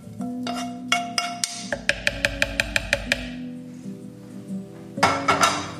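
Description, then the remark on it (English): Roasted peppers and half an onion, charred in about a tablespoon of oil, are tipped from a pan into a blender, with a quick run of metallic taps and clinks as the pan is scraped, then a final clatter. No one speaks. “I've poured my roasted peppers and onions into there”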